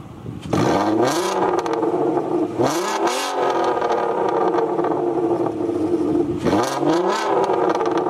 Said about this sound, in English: the Mark IV, which is a Volkswagen, the R32. It has a 3.2-liter motor in it, and it sounds like a Wookiee. A Wookiee, yeah. So I have like a little clip, exhaust clip, so you can hear it, so it makes sense.